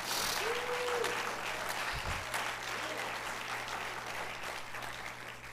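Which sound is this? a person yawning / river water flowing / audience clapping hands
audience clapping hands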